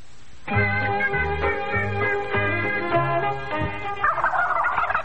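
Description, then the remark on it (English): A live turkey gobbles loudly, a rapid, rattling burst of warbling calls lasting several seconds, ending in a rougher, noisier squawk with no talking. “All right, I didn't know Bill would send a live turkey.”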